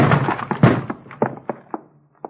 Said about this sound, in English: Door's locked. Give it your shoulder. I'll have to, I guess.